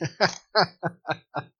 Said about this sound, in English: That was the beer burp. Yeah, that was the beer burp. I tried to hold it back a little bit. It didn't work.